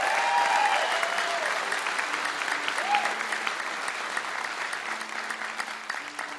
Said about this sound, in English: How about a large round of applause for these fantastic artists that we get to share the stage with tonight?